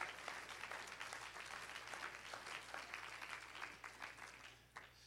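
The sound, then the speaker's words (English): An audience clapping hands to the Lord in a dense, steady wash of applause, many overlapping claps with no clear single rhythm, fairly loud and sustained throughout with no voices. “Jesus, everybody clap your hands to the Lord today.”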